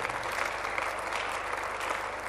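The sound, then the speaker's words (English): An audience claps continuously, a dense, steady wash of many hands with no breaks, loud and even throughout, with a faint low hum underneath. “Come on, continue clapping because that is yours.”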